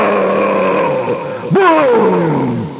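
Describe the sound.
A voice imitates a washing machine jammed by a tangled rag rug: a steady droning hum, then a sudden loud boom and roar as the motor bursts into flame, swooping up in pitch and slowly sinking away, forceful.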